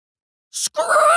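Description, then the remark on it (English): A short hissing burst is followed at once by a loud, sustained, shrill squeal of speaker feedback, harsh, with no voices around it. “The spine-scraping squeal of speaker feedback blasts through the air.”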